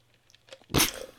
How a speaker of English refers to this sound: That was such a dramatic sip from the cup.